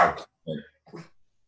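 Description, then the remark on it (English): A dog named Scruffy barks three times in quick succession, short sharp yaps about half a second apart, moderately loud, with nothing else in the background. “My dog Scruffy's like. Oh, hi, Scruffy. Yeah. He does this on occasion.”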